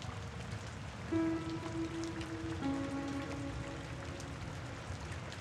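Steady rain patters on a surface in a dense, continuous hiss, while a low humming drone with a slightly wavering pitch rises out of it for a few seconds partway through.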